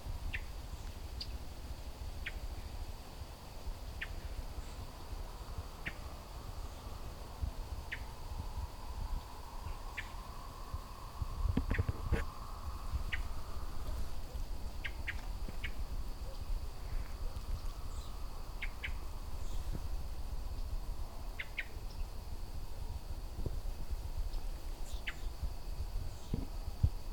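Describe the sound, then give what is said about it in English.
A songbird gives sharp, repeated agitated chip calls at irregular intervals at a house cat sneaking by, over a steady high insect drone and low outdoor rumble. “Oh, I see what he's mad about. It's not me. There's a house cat sneaking by here.”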